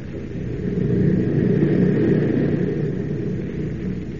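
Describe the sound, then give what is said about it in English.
A steady, low airplane engine drone hums continuously as the plane flies across the wilderness of northern Canada, a deep rumbling roar that swells slightly and holds even throughout, with no voices over it. “On across the unlimited wilderness of northern Canada, the plane wings its way, carrying not only Perry White and his party, but also the man who has vowed to destroy them.”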